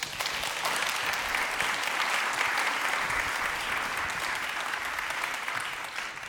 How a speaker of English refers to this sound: Let's clap them.